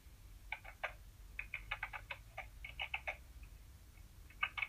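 Rapid typing on a keyboard: a quick, irregular run of sharp plastic clicks and taps in small bursts over a low steady hum, with no voices.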